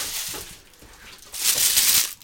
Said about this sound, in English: Listeners, there's some great tissue paper rustling going on.